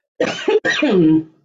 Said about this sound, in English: I hope the coughing will stop. I'm asking Archangel Michael to have that tickle. There's still a little tickle cough that comes, even though I'm feeling much, much better over all everything.